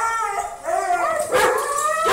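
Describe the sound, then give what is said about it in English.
Dogs howl together in a sustained, wavering chorus, several long tones rising and falling and overlapping, fairly loud with no talking. “Oh yeah, they love a little howl.”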